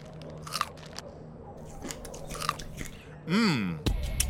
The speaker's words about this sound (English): Habanero chilies. Ha, you think those got heat, do ya? I could munch those all day.